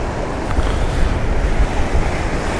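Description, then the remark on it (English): Continuous roar of surf with waves breaking at the base of cliffs, a broad rumbling wash that swells and recedes, mixed with gusty wind buffeting the microphone; no voices. “Be nice if I could time it with the waves at the base of the cliffs.”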